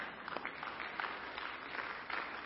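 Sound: audience clapping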